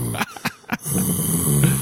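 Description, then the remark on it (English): A person imitates the growl of a stop-motion penis creature seen in shots of a film: a few short raspy bursts, then a sustained low, gravelly rumble that holds steady for about a second. “We even see some shots where it's like stop motion and it's growling going.”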